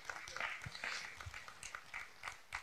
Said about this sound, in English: And yeah, go ahead and give God a hand clap of praise.